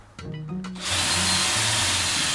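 A power drill whirs up and bores holes into a piece of IKEA furniture, starting with a short revving motor hum before settling into a loud, steady grinding whine, with no talking.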